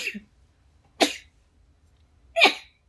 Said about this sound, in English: And it sneezes. Hold up.